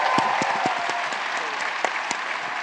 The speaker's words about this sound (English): And I'll say this as part of the, yeah, you can clap. That's some good stories.